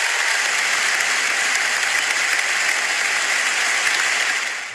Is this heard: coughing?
no